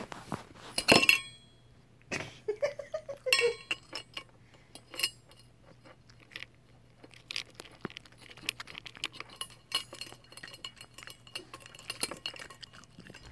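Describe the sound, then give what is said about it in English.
Alabaster, a male cat, eats his dinner messily: irregular wet smacks and crunchy clicks mixed with sharp dinging clinks against a bowl, scattered unevenly over several seconds with a low steady hum underneath and no talking. “And that was cat ASMR. Food eating.”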